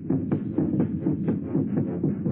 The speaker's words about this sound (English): It's your heart, of course, that you hear, stepping up its cadence, pounding under the forced draft of fear. Now you can see nothing, remember nothing, sense nothing but this strangling, suffocating beat of your own heart, throbbing its final protest